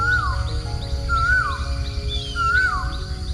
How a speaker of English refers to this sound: Gradually, more birds wake until the morning air is filled with a chorus of echoing, trilling melodies.